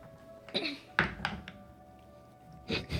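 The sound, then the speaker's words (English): A few sharp clattering knocks as dice are rolled across a table for a perception check in a tabletop game, a quick burst of hits followed by a short pause and another clack, with a low steady hum beneath. “I gotta stop rolling this dice.”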